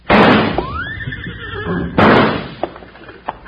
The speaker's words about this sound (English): Hey, it worked. Them two horses took off like they were heading for the barn.